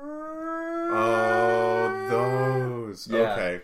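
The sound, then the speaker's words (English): A voice imitates the wailing siren built into a Stuka dive bomber, heard when it was dive bombing: a sustained, loud, howling tone held for about three seconds, wavering slightly in pitch before breaking off into a short rough burst. “correct me if I'm wrong, they couldn't withdraw their landing gear, so they got sirens built into them.”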